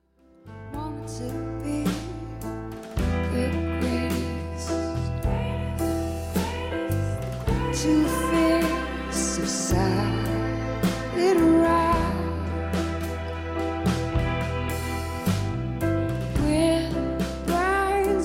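A song's chorus plays steadily for about eighteen seconds, a mellow full arrangement with sustained bass notes and strings under a woman's soft singing, at an even, moderately loud level.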